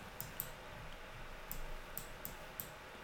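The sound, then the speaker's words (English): Six sharp, light clicks of a computer mouse used with a laptop, irregularly spaced, a quick pair near the start and a looser run later, fairly quiet over a low background hum, with no talking. “I hear a clicking noise. That's just my mouse, because my laptop's right here in my face.”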